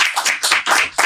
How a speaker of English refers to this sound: Listen, we give them a round of applause, please. Yeah. This is amazing.